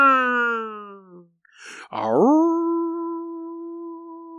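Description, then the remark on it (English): A person vocally mimics a klaxon with a long, descending howl, a short breathy gap, then a rising wail that holds steady, coming across like a wolf howling. Loud, no words. “Sounds like a wolf. We got a wolf on board.”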